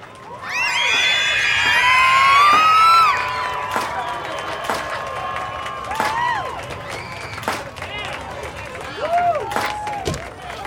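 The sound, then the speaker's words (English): A crowd of girls in a packed Times Square screaming and cheering, a dense burst of high-pitched shrieks at first, then scattered squeals and whoops rising over the continuing loud crowd noise. “What do you think the girls are screaming about?”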